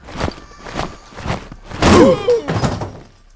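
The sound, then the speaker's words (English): Heavy, steady thuds of the marching Persian army's feet tramp in unison, about five or six booming steps at an even pace, with a brief tonal scrape mixed in midway. “The ground begins to shake with the sound of tramping feet.”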